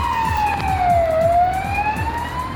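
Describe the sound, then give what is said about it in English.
Sirens from more than one police car wail steadily, pitch sliding down and then back up, loud over a low rumbling engine and road noise, as the police cars catch up to a van. “When Natasha checks the rearview mirror again, she sees the flashing lights of the cop car in the distance catching up to them. No, it's more than one cop car.”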